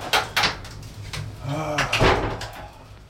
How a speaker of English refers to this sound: Okay, let's close that door.